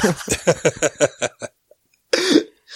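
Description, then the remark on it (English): A voice imitates Beria's disdainful sniff at Stalin's funeral, when the church is invited to view Stalin, fairly loud: a quick run of rhythmic huffing bursts, a short pause, then one longer, breathy snort. “Beria like sniffs and goes, and then the bishop show up.”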